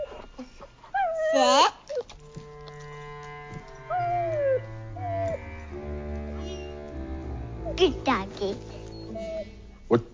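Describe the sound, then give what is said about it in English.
A dog named Masher, also called Sparkle Pony, whimpers in the film Playing with Fire, in a series of high, wavering whines and cries that rise and fall, with short pauses between them and a low hum underneath. “I think the baby broke your dog.”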